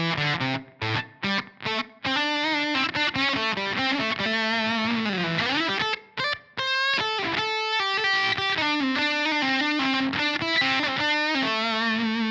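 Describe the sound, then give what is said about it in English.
A buzzy, ratty fuzz electric guitar played through a clean amp model plays a busy riff with stuttering choppy stops at the start, sustained notes and bends, loud with no talking. “I have the option to be able to use like a gain staged amp or a hot amp with my fuzz tones, or if I really wanted that sort of ratty kind of buzzy sound with a clean amp, like.”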